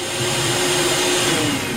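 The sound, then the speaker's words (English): A blender with its lid on blitzes a drink with a tablespoon of fine bran. It runs steadily at full speed, a dense, even whirring roar with a sustained motor hum and no breaks or speech. “That's fine bran. It's fine. I'm going to blitz it up.”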